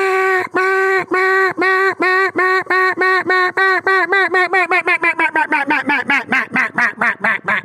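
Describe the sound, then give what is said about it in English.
A single reed duck call blows a mallard highball sequence: a long run of loud, nasal quacks that start drawn out, then quicken and shorten toward the end, with no talking. “he transitions that over into a single reed duck call of being a very, very ducky meat caller”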